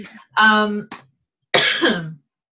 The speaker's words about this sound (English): all right, tell us about your supplement routine while I mute myself and cough from all the smoke.